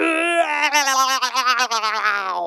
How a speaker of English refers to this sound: So ring that buzzer. It sounds like a lion roar.